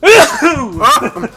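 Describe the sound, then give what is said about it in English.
A single loud sneeze in a booth: a drawn-out voiced intake builds up, then breaks into a sharp, breathy burst, followed by a brief vocal trailing sound. “And immediately you lose the title of best host for sneezing all over the booth.”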